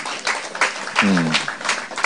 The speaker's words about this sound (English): You can clap.